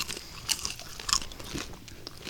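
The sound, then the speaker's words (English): Crunching of crispy hardwood-smoked bacon being bitten and chewed, with several sharp crackly bursts in an uneven rhythm over a faint background hiss. “That is tasteless. Well, it's crunchy.”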